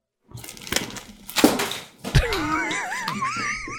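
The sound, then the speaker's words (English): Water spills onto a table with a rushing, clattery splash and a solid thunk partway through, then a wavering, squeaky warble trails off. No one speaks. “Sorry, spilled a bunch of water.”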